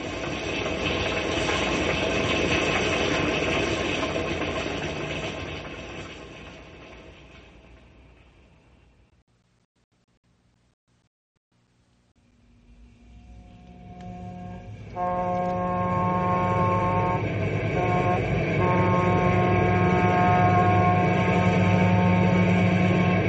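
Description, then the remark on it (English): A train engine rumbles loudly along the tracks, fading to near silence midway, then surging back with steady mechanical chugging and a hissing, whistle-like tone. No voices are heard. “Those engines powerful. Not enough to jump across canyons, though.”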